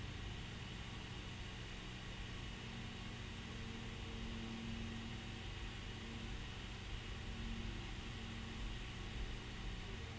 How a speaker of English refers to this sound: I don't know why the blender sounds so much better than this script.